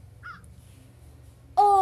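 After a quiet, faintly rumbling stretch with a small chirp early on, a crow lets out one loud, harsh caw at the very end.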